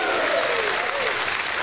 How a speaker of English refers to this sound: If you're thankful for the cross of Calvary and the blood of Jesus, give him a hand clap and somebody give him a shout of praise.